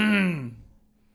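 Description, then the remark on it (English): A single voiced throat clearing that starts loud and trails off with a falling pitch after about half a second, followed by quiet. “No, I'm not talking about you clearing your throat.”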